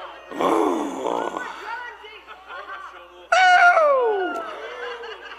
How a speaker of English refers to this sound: Oh, it's getting good. I'm getting to growling now, guys.